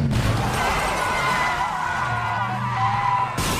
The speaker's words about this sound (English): And a car smashes into the side of the Mercedes. Thunk! Just comes out of nowhere.